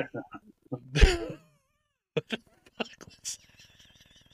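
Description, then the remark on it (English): A person lets out a single loud, strained screech that wavers in pitch, much like an injured cat yowling, lasting about half a second amid brief, muffled vocal sounds; it is meant as an imitation of a Jerry Lawler noise. “Jesus, it sounded like a cat got hit by a fucking truck.”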